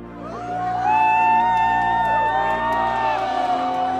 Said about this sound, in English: Jed turned to face the applause. It grew from a modest murmur into a thundering chorus, hundreds of hands coming together in unison.